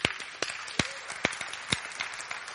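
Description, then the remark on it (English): A church audience applauds a man who helps lead its worship teams, a dense patter of many hands clapping with several sharper, louder claps standing out at irregular intervals over a steady bright wash, with no one speaking. “Let's give him a clap.”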